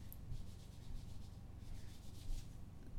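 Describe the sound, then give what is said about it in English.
Something is delivered under a door, sliding through with a soft, steady papery scraping and rubbing that lasts about three seconds, faint and hissy, with slight swells in loudness and no voices. “Now there's something being delivered under the door of this room.”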